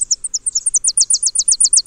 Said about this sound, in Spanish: O un árbol lleno de currucas. Estos son chipes peregrinos.